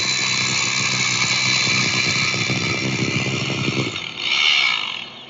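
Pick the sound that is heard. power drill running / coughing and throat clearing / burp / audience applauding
power drill running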